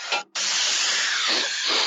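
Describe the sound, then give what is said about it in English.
A short burst of air freshener aerosol spray hisses, breaks off for an instant, then sprays again in a long, steady hiss lasting nearly two seconds. “Say, it's a bit stuffy in here. And I know a certain someone who really fancies lilac.”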